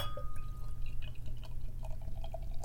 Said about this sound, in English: It pours well. You definitely hear the sound. It pours well.